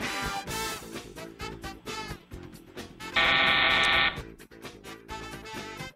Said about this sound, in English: We have a nice parting gift, dial tone.